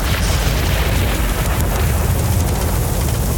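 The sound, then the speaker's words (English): A loud, sustained rumble of thunder right after lightning, deep and booming with a roaring, crackling edge that stays heavy throughout, shaking the walls, without any voices. “Moments after the explosion of beautiful streams of lightning, the pressure in the room felt like it was closing in on us, with a sound so loud it shook the walls around us.”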